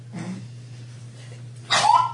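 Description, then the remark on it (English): A short, stifled sneeze from someone trying to sneeze quietly bursts out near the end after a quiet lead-in with a faint breath, muffled, with a steady low hum underneath. “That was me trying to sneeze quietly.”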